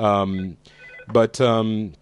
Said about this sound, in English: Turkey's getting a phone call to relieve the tension. Thank you, Turkey.